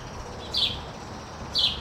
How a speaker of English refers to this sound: And the number one bird in the world, as far as how many there are, is the house sparrow.